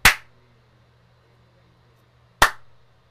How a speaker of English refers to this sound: Did you only hear one clap again?